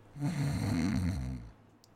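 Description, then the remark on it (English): A person imitates a single drawn-out snore, a rattling low-pitched rasp lasting over a second before trailing off into quiet. “I can also do a pretty good snore.”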